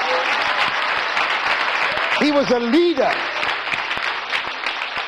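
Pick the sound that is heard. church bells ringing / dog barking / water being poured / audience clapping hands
audience clapping hands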